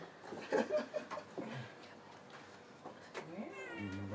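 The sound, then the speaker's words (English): A cat meows in a studio, a couple of drawn-out, rising cries toward the end, after a stretch of shuffling and faint indistinct voices. “getting attacked by the cats, guys.”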